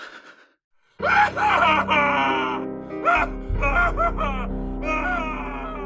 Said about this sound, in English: Your scream cuts through the empty building, where it dies alone.